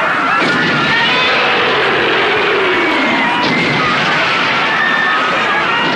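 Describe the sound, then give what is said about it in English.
A roaring concert crowd fills the air with dense, continuous screaming and cheering, high-pitched shrieks layered over a steady wall of noise that stays loud throughout. “Just listen to how loud the crowds were at just one of their concerts back then.”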